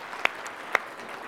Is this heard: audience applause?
yes